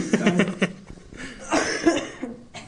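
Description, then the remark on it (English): Someone coughs several times in a rough, irregular run, harsh bursts with short pauses between them and no talking. “You're really good at coughing, yeah.”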